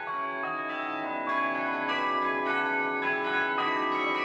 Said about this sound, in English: No, fairness, the bells are fantastic. Yeah. I have to say, yeah. Yeah, I enjoy my day in Cobh today. It's a very fine, nice Easter Sunday. And Cobh Cathedral had fantastic chimes today. So a fascinating chime.